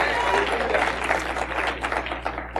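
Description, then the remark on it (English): An audience claps their hands in praise of the Lord in a dense, continuous burst of applause, many overlapping claps with a steady low hum beneath, tapering slightly toward the end. “Give the Lord a hand clap of praise, because He's worthy of it.”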